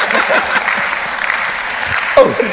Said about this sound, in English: I thought she's clapping for me.